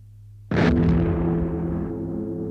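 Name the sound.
cannon firing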